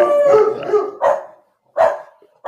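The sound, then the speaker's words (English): Dogs bark and howl: a long drawn-out howl opens, then sharp barks come in bursts with short pauses between them, loud and clear with no talking. “You have dogs?”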